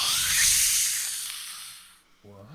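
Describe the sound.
A voice imitates, by mouth rather than a sound effect, the long, harsh shrieking hiss of a creature on fire, loud and breathy at first and slowly fading over about two seconds, followed by a brief pause and the start of a voiced sound.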